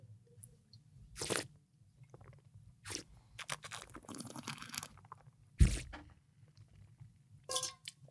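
Someone spits out wine up close: several short wet slurps and swishes, then a sharp, loud spit burst, followed by a few softer mouth noises. No one speaks.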